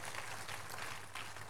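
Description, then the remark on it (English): An audience at a Monday morning prayer service claps their hands for Jesus in a steady, dense wash of applause that stays even from start to finish, with no voices standing out. “You are clapping for Jesus. Make it better and bigger.”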